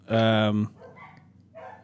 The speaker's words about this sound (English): Dude, you can hear the dogs? Yeah. So that means everyone can hear the dogs.